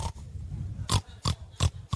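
A pig grunts and oinks in a quick series of short, snorting bursts, about five in two seconds, fairly loud with a low rumbling undertone between them.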